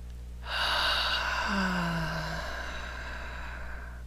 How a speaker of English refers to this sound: Another nice deep breath.